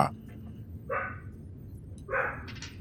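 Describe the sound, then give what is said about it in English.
Two separate dog barks ring out about a second apart, moderately loud against a steady low background rumble, with a brief yip near the start. “Hold on while I'm waiting for the dogs to quit.”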